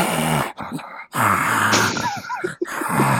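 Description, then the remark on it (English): A voice imitating heavy, raspy breathing heard from a wardrobe in a movie: several loud rasping inhales and exhales in a steady rhythm, with groaning, wheezy tones and brief pauses between breaths. “as Carolyn is getting close to the wardrobe, she hears breathing and she's like, I can hear you breathing”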